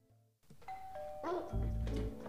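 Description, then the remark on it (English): A doorbell rings with a bright, sustained electronic chime, followed by a second rising tone, then a loud low rumble of movement or footsteps as a woman comes in the door. “All right, so we're obviously she's entering the door here. It's super loud.”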